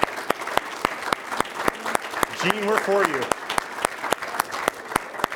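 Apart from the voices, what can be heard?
audience applause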